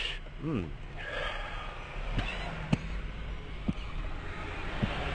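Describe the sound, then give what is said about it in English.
A long, breathy inhale drawn into the mic as someone takes a hit off a joint, with a brief vocal sound at the start and a few soft clicks scattered through the hiss. “Let me take a hit.”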